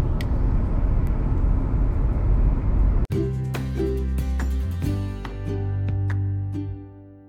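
Steady low rumble of a car cabin on the move during a commute to work, a broad road roar that shifts partway through into a smoother, humming engine drone, with no one speaking.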